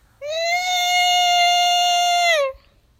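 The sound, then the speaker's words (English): A single loud, high-pitched scream like a baby goat's bleat holds one steady, strained pitch for about two seconds, then slides down and cuts off, with no talking around it. “That was like a baby goat scream.”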